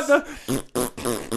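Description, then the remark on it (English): A voice blows several short, buzzy raspberry bursts in quick succession, imitating fart noises; fairly loud, with brief gaps between the sputters. “Oh, Facebook farting all over the place.”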